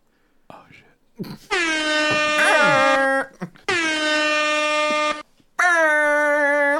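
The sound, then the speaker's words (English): Three long, loud air horn blasts with short gaps between them, the first two steady and droning, the last a little higher in pitch, preceded by faint breathy noises. “This is a sad air horn.”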